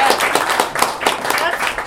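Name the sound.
studio audience applause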